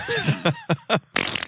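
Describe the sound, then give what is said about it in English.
A rapid series of comic fart sound effects, four short blasts followed by a longer, raspier sputter, loud with no talking. “I would have farted on her 14 times.”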